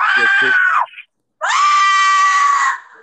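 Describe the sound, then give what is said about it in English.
A person imitates a giant salamander's screech: two loud, strained, shrill cries, the first brief with a few throaty clicks at its start, then a longer held wail after a short pause. “It was like a massive salamander and it would make that screeching sound.”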